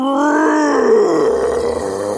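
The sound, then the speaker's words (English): A big black bear in the woods roars once, a loud, rough, drawn-out growl that starts high and slides lower in pitch, lasting about two seconds with no talking over it. “What is roaring? Slim looked around vigilantly.”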